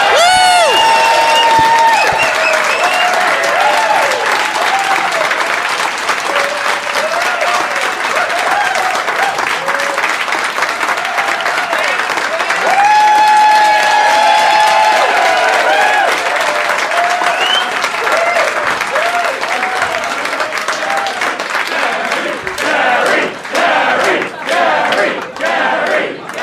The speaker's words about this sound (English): Ladies and gentlemen, welcome to the Unipub Comedy Club in Canberra. Let's get a big round of applause for Dave Anthony and Gareth Reynolds for a live dollop.